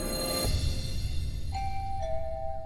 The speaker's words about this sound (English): The doorbell rang. I looked through my backyard to the front of that door, and I saw this teenage girl standing there.